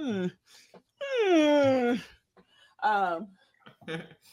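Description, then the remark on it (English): A dog whines in drawn-out, high, falling cries, one long whine followed by shorter yelps and whimpers, clear with short pauses between. “Is that him growling in the background?”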